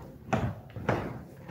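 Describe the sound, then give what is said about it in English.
A door is pulled shut, with two quick, fairly soft knocks about half a second apart, like the door swinging closed and then its latch clicking into place. “Let me close this door.”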